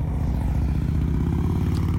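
A motorcycle engine rumbles steadily and loudly, its deep throbbing idle pulsing evenly for the whole two seconds with no voices.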